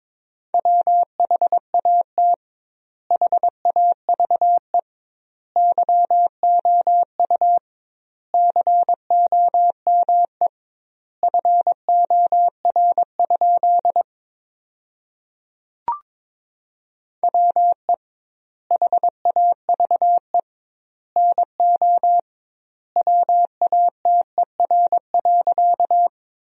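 Morse code beeps at about 22 words per minute, sending sentences built from the top 100 words with double word spacing: a steady mid-pitched tone keyed in quick dots and dashes, grouped into words separated by short silences, with no voices.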